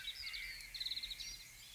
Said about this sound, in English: On the 30th of May 1916, to the sound of roosting birdsong in the trees, Private Robert Digby of the 1st Hampshire Regiment was executed by firing squad.